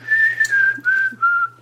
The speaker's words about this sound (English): I can't stop. Every spare moment I have, I'm whistling.